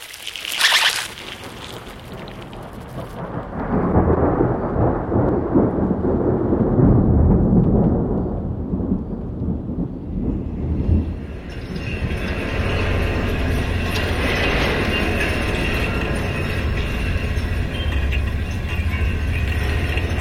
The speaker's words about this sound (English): This is the sound of a wire fence that runs around the perimeter of the property, and that's kind of an interesting story because I thought this fence was such an insult to the landscape in a way.